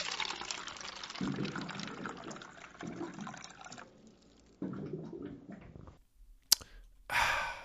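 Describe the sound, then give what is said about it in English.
Water pours and glugs from a water cooler jug in several bubbling bursts, fairly loud, ending with a sharp click and a brief splashy gush. “Oh, well, you know what that sound means. It's time for your water cooler facts.”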